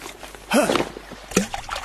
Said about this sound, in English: Tell me I'm dreaming and you did not just throw your mobile phone in the river. Oh, yes, I did.